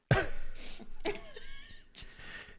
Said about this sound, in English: Did you just, like, get a huge whiff of patron dust in your lungs and you had to cough?